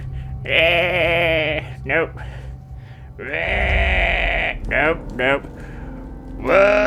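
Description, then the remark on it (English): A person attempting a guttural roar instead makes loud, wavering bleats like a sheep or goat, a couple of long strained cries broken up by shorter quick ones, with a faint low hum underneath. “Oh, that sounded like a sheep. I'm just sounding like a goat now.”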